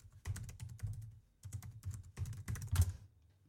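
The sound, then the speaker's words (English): Rapid typing on a computer keyboard while looking something up, in irregular bursts of clicky keystrokes, fairly quiet, with a brief pause in the middle and one slightly heavier key hit near the end. “Sorry, typing noises.”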